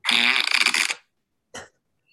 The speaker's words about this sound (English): But again, when they were in the editing room, when he puts it up to his head, go ahead and play. He farts really loud.